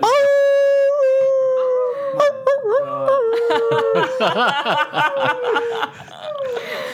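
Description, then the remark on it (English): A person lets out a long, steady howl imitation, then several voices join in with wavering, overlapping howls that break into chuckles and laughter, loud and close. “Let's just start a howl.”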